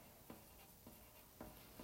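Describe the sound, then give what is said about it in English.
Pen or pencil scratching across a sheet of paper in short, repeated strokes, roughly every half second, quiet with no voices, as names are written down on the sheet. “Okay, so we are going to be coming up with fandom names and writing them down on this sheet of paper.”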